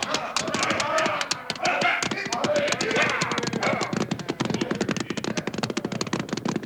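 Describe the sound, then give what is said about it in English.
A fast, steady drumming of galloping horse hooves fills the scene, loud at first and continuing briskly as the riders move off, with some indistinct shouting mixed in early on. “All right, man, hit the horses. Let's ride.”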